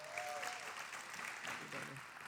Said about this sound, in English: Will y'all give her a big round of applause?